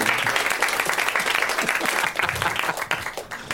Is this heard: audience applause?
yes